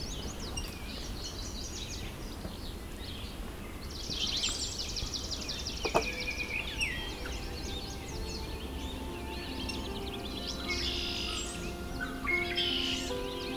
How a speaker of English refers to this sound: Red-winged blackbird.